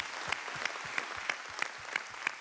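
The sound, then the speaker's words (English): An audience applauds its church elders steadily, a dense wash of many hands clapping with a few sharper, evenly spaced claps standing out in a regular rhythm. No one speaks over it. “I want to give our elders a great big round of applause.”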